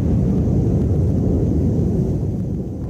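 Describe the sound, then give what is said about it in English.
A deep, loud rolling rumble from the double sonic booms of SpaceX Falcon Heavy side boosters returning to Earth fills the whole stretch, heavy in the low end and fading only slightly toward the finish, with no voices. “they came back with two sonic booms, which was pretty wild to hear”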